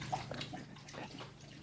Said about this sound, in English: Listen to the soothing sounds as I lap up some water.